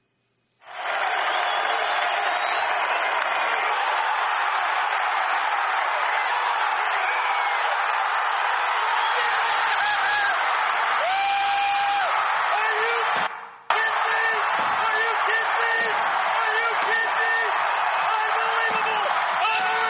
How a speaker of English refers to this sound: Did you hear the roar change when they realized that ball landed beyond any catcher in the outfield, that it was a home run?